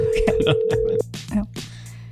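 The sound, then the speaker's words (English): A phone's ringback tone plays over a speakerphone during a call to a mother, one steady buzzing pulse lasting about a second before cutting off, with people talking over and after it. “Is it ringing? Yeah.”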